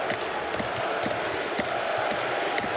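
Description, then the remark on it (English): A big hockey arena crowd in Montreal roars and chants "Fleury" for goaltender Fleury's 500th career win, a dense, steady wall of voices with rhythmic swells rising through it, continuous and fairly loud throughout. “And listen to the crowd, Fleury, they're chanting.”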